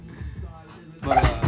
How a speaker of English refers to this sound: What's that door?